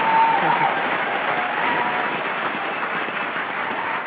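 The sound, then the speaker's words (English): Steady applause from a crowd celebrating I2I reaching 18 million people through the media fills the whole few seconds, a dense, even wash of clapping at a consistent moderate loudness, with a faint voice or whistle briefly audible near the start. “We reached 18 million people through the media in the last year, and I'm just going to give us a little round of applause here, because this is that's huge.”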